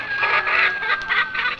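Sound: chickens clucking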